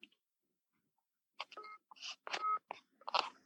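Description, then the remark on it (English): A phone's incoming-call tones chirp in a quick, uneven run of bright electronic beeps, clear after a moment of silence, with no talking. “I'm just getting a phone call.”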